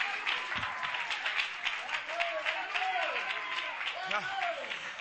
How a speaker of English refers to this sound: Clap your hands and give him some praise.